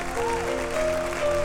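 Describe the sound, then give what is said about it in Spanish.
An audience at a church service claps steadily for the King (God) in a dense, continuous burst of applause, with sustained keyboard notes ringing underneath throughout. “Alguien da un aplauso al Rey.”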